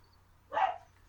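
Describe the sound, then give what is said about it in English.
A dog lets out one short, sharp bark, moderately loud against a quiet background with a faint low hum and no one speaking. “Let me go see what's going on with the dog before we get to the next pick.”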